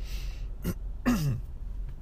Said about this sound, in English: I have a little bit of a cough. And every time I cough, I feel like everyone's staring at me. And it's not even really a cough. It's like, I don't know what you'd call it. It's seasonal allergies.